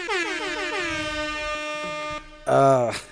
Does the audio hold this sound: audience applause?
no